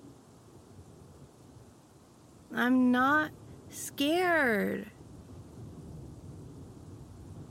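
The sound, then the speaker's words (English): A steady low rumble of a thunderstorm fills the background throughout, with a voice speaking briefly over it in the middle. “There's a storm.”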